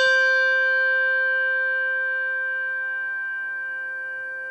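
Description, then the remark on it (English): A single Schulmerich handbell with a tang is struck once, giving a bright, clear tone with a shimmering metallic overtone that rings out and fades slowly over several seconds. No one speaks. “Schulmerich bell with tang.”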